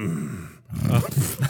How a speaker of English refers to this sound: nice retort with the snort.